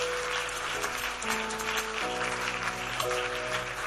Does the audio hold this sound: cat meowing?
no